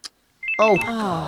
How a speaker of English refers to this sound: we all said we'd switched our phones off. I know, I'm sorry, I'll switch it off now.